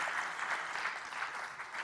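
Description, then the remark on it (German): Steady audience applause for the assistants who helped fills the whole stretch, a dense crackle of many hands clapping at once, moderately loud and continuous with no voices on top. “Dankeschön, die Assistenten kriegen einen Applaus.”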